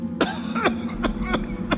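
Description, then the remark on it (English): A run of five wet, phlegmy coughs, fairly loud, coming in uneven bursts over a low steady hum, with no talking. “opened his mouth to speak, but his words drowned in a phlegmy cough.”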